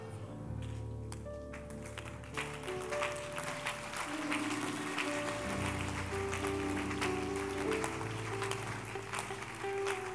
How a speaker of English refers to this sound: Maybe this one you clap better.